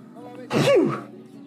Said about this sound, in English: And I'm going to sneeze again, aren't I?